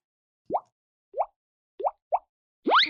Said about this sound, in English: Wow! You're blowing bubbles on Mom's nose.